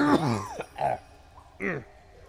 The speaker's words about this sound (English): How long have you had that cough? My poor friend found it impossible to reply in many minutes.